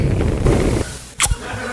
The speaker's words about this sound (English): It was a quick kiss. Yeah, they're just friends.